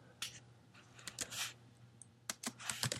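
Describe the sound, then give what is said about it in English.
Quiet computer keyboard typing and mouse clicks in irregular bursts as someone browses the internet while recording, a steady low hum running underneath, with no one talking. “Sorry if you hear me clicking around a little bit.”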